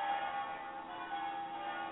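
Church bells ring continuously for Easter in Venice, early on Easter Sunday morning. Their overlapping tones blend into a steady, resonant wash, with no voices present.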